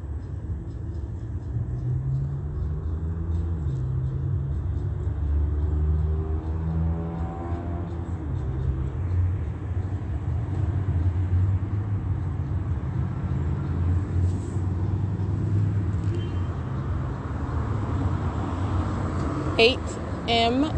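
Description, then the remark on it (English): An Omnitrans city bus rumbles by amid city traffic, its deep, steady engine drone filling the scene for about twenty seconds with a brief sharper clatter near the end. “So when I'm documenting passing Omnitrans, understand everybody on that bus is monitoring, the driver is monitoring, okay?”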